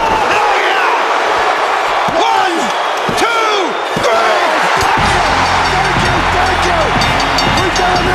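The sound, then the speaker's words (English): A wrestling arena crowd in 1998 goes wild as Goldberg hits the spear and the jackhammer: loud, continuous roaring and cheering with individual voices yelling and whooping above the din, swelling even fuller and heavier in the second half. “Goldberg gets the spear, gets the jackhammer, the fans go wild.”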